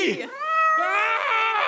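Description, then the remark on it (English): A cat lets out a loud, drawn-out yowl, its pitch wavering and rising in a strained, complaining wail with a brief break partway through. “I'm just gonna wrap my lips around this cat.”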